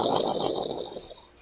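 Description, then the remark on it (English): A spacecraft shimmies and shakes with a giant rumble, a steady, gritty mechanical roar with a faint hissing whine above it, holding for about a second before tapering off. No one speaks. “All of a sudden, their spacecraft shimmies and shakes with a giant rumble.”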